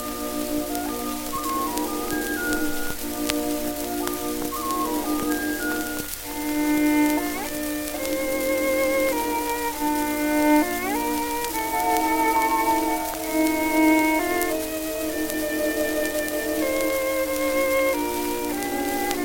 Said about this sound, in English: I'm going to play one for you now, and it's a beautiful violin rendition from the early 20th century. I apologize for the pops and hisses that you may hear. Again, this is a pretty old recording.